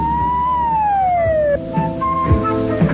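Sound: police car siren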